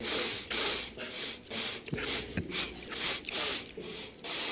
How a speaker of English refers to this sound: What is that sound? That's Donald Trump sniffling.